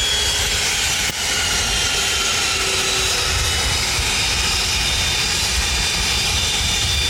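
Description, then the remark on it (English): Loud, steady roar of an arriving aircraft's engines as they shut down, a broad rushing drone with a faint whine on top that holds evenly throughout, with no voices. “Well, we'll just hold for a sec while they shut down.”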